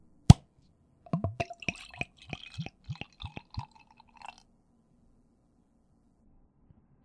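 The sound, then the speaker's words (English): A sharp pop of a cap coming off a bottle of Petite Saison, a farmhouse ale from Rock Mill Brewery in Lancaster, Ohio, then a quick run of hollow glugging splashes as the light golden beer is poured into a glass, fairly loud, fading out after a few seconds. “Let's pop it open and see what we have.”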